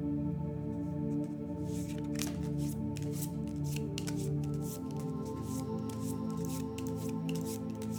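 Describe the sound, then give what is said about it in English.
Steady shuffling of a deck of crystal oracle cards for a divination session, with soft papery riffles and flicks repeating over a sustained musical drone in the background; no one speaks. “I'm shuffling the species by the thousands crystal oral deck.”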